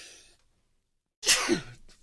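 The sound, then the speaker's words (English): A single sharp sneeze bursts out after a soft breath and a moment of silence, ending in a brief falling vocal tail. “Bless you.”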